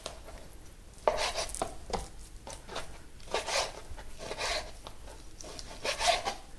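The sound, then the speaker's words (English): A knife cuts chicken breast into fairly even pieces about 2.5 to 3 centimetres big, with a string of irregular soft thuds and slicing scrapes, some strokes sharper than others, and no talking over them. “Cut through the breast, doesn't really matter how you do it, as long as the pieces are fairly even, because you do want them to cook at the same time.”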